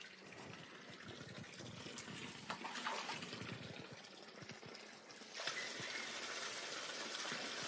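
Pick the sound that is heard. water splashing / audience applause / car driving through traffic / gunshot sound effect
water splashing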